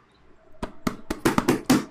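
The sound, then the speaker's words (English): A hand slaps a copy of the book Master and Apprentice about seven times in quick, uneven succession, each hit sharp, growing louder toward the end, with no talking. “Do you have your copy? I do, right here. Same. Slap it.”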